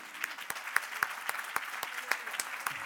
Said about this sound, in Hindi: आप सब मिलकर खुदा के लिए ताली बजाएंगे।